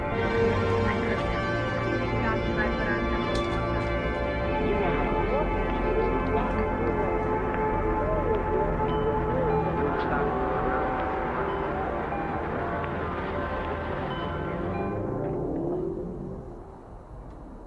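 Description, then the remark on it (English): A loud, dense musical intro sting for the show Movies, Movies, Movies, with a bright doorbell-style chime, the FBI radio doorbell, ringing through it, playing steadily for about sixteen seconds before dropping away to a quieter tail. “I love that sting so much. It's got the FBI radio doorbell in it.”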